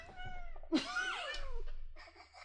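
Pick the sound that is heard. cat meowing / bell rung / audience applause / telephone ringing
cat meowing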